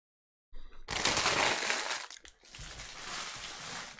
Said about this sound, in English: Right, that's all the rustling done now. I've ate my popcorn.